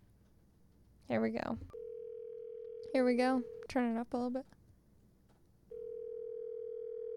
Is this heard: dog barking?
no